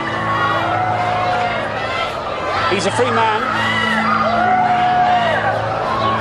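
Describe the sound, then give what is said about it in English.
A large outdoor crowd on a street roars steadily as they watch a car leave court, with whoops and yells rising out of the din and a man speaking over the noise throughout. “The crowd surge on the street to watch the car leave.”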